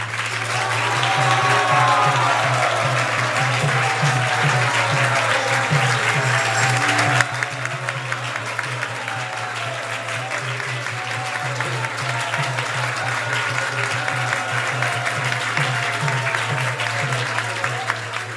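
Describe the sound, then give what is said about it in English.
An audience at ISV claps for a visiting guest to come back, about eighteen seconds of dense, continuous patter from many hands, with some faint voices mixed in and a low steady hum underneath. “Anybody who wants him to come back, please clap him.”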